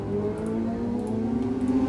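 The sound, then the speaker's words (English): A gang of motorcycles outside an apartment drone and rev together in a steady, fairly loud rumble, their pitch creeping upward as the group passes by, with no talking over it. “You've got like a gang of motorcycles.”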